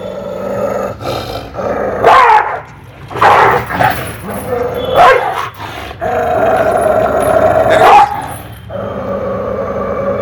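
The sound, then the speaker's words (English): A man's voice imitates a dog in a televised on-field interview right after a comeback win, letting out a string of rough, growling barks and yelps in bursts over about ten seconds, loud with a noisy crowd-like background. “Yeah, if you don't speak dog. I can translate for you.”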